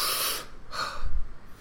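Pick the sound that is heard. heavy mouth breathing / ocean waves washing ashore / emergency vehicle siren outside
heavy mouth breathing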